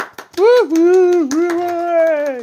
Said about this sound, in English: Studio audience clapping in as well. I haven't heard the same applause on my way in many years. I've missed it.